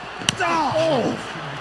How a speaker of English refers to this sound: Listen to these blows. Are your mouthpieces in, people?